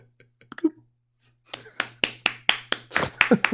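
Brief applause for Machinima Man: after a nearly silent start with a faint low hum, around eight sharp, steady hand claps ring out, fairly loud and evenly paced, like one or two people clapping.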